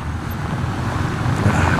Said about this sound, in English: All right, here comes the mail truck or Amazon truck.